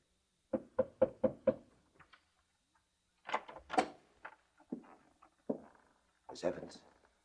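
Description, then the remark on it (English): Five quick, evenly spaced knocks on a door ring out firm, followed by a short pause and then a person speaking. “What was that? Someone's at the door”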